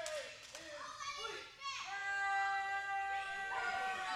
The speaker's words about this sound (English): There's a lot of kids in here. They're making a lot of noise. A lot of noise here. They're really getting into this.